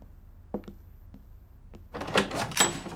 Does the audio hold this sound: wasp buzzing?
no